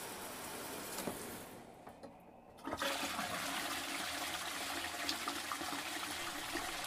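A toilet in a bathroom flushes: a steady watery hiss dips briefly, then a loud gushing rush of water surges in and keeps roaring to the end, with no voices.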